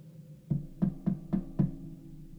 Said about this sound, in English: It watched the door handle twist, then stop. A moment passed, then a light knock.